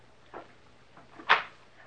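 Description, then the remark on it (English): A quiet metallic click followed about a second later by a sharper, louder clack as a key is turned in a door lock and the door unlocks, with no voices. “The door unlocks.”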